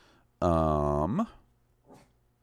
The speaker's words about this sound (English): The so threatening 22-pound Boston Terrier guard dog is getting her hackles up. Looking out the front door, it might be my dinner.